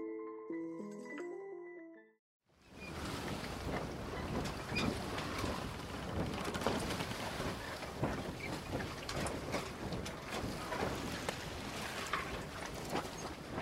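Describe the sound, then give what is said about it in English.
A short run of musical tones ends, then loud, continuous sea surf at the shoreline rushes in, a dense wash of breaking water and wind with no voices, at the edge of a continent where the sea meets the land as a launch boat is dragged ashore. “At the edge of the continent, where the sea meets the land, the launch boat is dragged ashore by grunting men who've come looking for gold.”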